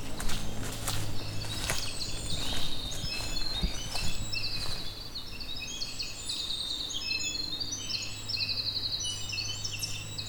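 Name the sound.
winter wren song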